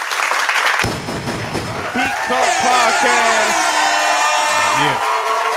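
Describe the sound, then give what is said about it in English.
A live audience bursts into clapping and cheering about a second in, with whoops and shouted voices rising over dense, steady applause that carries on loudly until the end. “We can clap it up for that.”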